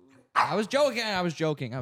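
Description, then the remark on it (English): A dog barks and yowls, four loud, drawn-out, throaty vocal bursts in quick succession, almost like it is talking back. “just talked about, she heard me talking about her dying.”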